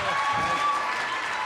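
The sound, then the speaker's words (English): An audience at CMU applauds to welcome a guest, a steady, dense wash of clapping that holds at an even, fairly loud level for the whole moment, with a faint murmur of voices underneath. “Yeah, I thought the applause would last a little longer, like all the time.”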